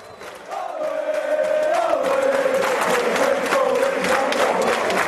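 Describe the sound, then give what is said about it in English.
A big sports crowd roars continuously, a dense wash of cheering with a sustained chant-like tone running through it, swelling loudly after a quieter first half-second and holding steady. “Do you listen to the crowd, or do you hear them, or do you know what they're saying?”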